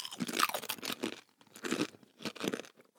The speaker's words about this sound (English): All right, well, let's crunch at the same time.